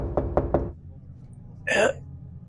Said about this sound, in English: Now you can choose not to open. You can choose not to open this footlocker. Oh, I'm not gonna open it. I'm not opening it. I'm gonna knock on it.